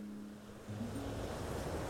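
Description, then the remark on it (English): Ocean waves wash steadily onto a beach that stretches for many miles in both directions along the water's edge, in a soft, continuous hiss of surf, with a faint low hum underneath and no voices. “…”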